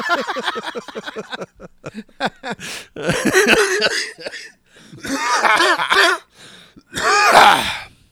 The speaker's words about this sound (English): Ever cough like that and see spots? Oh, yeah, all the time.